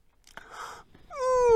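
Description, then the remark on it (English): A narrator voicing Paul Troll, a troll character in a bedtime story, gives an exaggerated, performed yawn: a breathy inhale followed by a loud, drawn-out voiced sigh that slides downward in pitch. “Yawned Paul Troll.”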